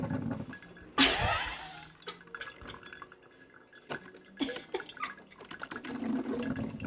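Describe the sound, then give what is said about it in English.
A drip coffee maker brews noisily, with a sudden hissing burst of steam followed by gurgling, sputtering drips and bubbling that swell and fade. “They have some of those drip coffee machines. See, and it starts getting really loud, like the coffee maker's angry.”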